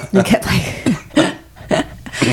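A person clears their throat repeatedly, five or so harsh, gravelly bursts in a loose rhythm, with short pauses between them.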